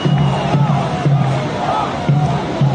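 A group of about 10 to 20 people shouting together in loud, rhythmic bursts, like chanting at a rally, disrupting a program, with repeated voiced pulses and a dense crowd roar.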